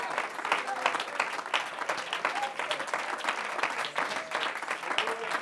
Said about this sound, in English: Come on, let's clap our hands and worship the Lord. Hallelujah.